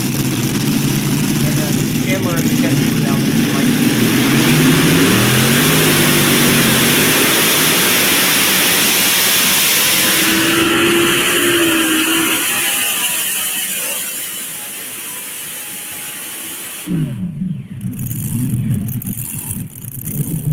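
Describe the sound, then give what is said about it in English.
A pulling tractor's engine roars loud at a Saturday-night tractor pull in Lufkin, revving with rising and falling pitch before easing off, then a sharp burst of noise near the end, with muffled voices in the background. “I haven't seen Kurt drive a tractor for a couple years”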